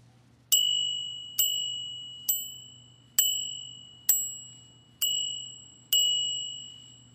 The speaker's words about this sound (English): And to me, that's sort of like the first seven rings of the bell.